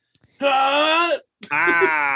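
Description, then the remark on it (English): Two loud, strained yells from a single voice, each held for nearly a second with a short pause between them, raw like someone powering up or straining hard. “Now, I know I described that quickly, but this is like a full three minutes of grunting and yelling”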